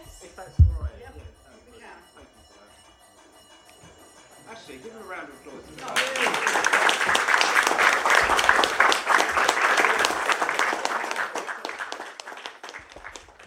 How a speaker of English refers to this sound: So what happened here, you may have heard it in the background, is the division bell rang, and what that is essentially a voting alarm. So it goes off and then MPs have to rush to the yes lobby or the no lobby to register their vote